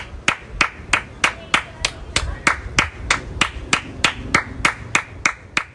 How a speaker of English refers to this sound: Before you answer, let's drop that Priyanka Chopra clap right now.